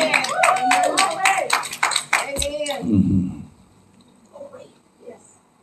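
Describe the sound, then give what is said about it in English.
An audience bursts into loud, rapid hand clapping as praise to God, with voices calling out over it for almost three seconds, then the applause cuts off and a quieter voice speaks. “Someone shout out and give God a good hand clap of praise.”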